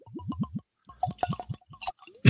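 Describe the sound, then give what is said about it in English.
Bourbon from Tennessee glugs out of a bottle into a glass in a quick series of hollow, rhythmic gurgles, five or six pulses, then a burst of splashier pouring with higher bubbling, ending in a brief louder splash. “That had a lot of glugs before it even got into the glass.”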